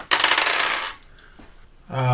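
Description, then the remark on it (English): A bright, rattling clatter of two dice being rolled for the wolves, tumbling across a hard surface for under a second, followed by a brief quiet before a voice starts speaking. “I'll just roll both of these for the wolfies.”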